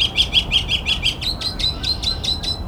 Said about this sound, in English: Got a male mockingbird. Northern mockingbird. And this is all along a train yard right next to a harbor. The big trail running between the two. Now I've got the mockingbird right above me. There he is.